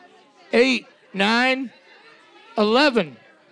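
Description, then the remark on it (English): A rowdy live audience shouts answers in three loud, raised bursts, each about half a second, over a low murmur of crowd chatter. “It's a rowdy crowd.”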